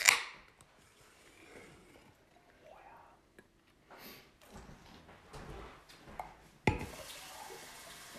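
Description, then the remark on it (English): Handling clatter and faint background murmur give way to a sharp crack as a beer brewed with South African hops is opened, followed by a steady fizzing hiss as the beer is poured. “So I'm going to pour a little out for those that didn't make it. And yeah, we're going to crack this bitch.”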